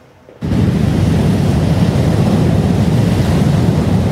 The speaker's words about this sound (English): Storm watchers are gathering on the rocks in Tofino as monster waves smash the shoreline. Extreme winds are expected over the next 36 hours, and they will be strongest near the water.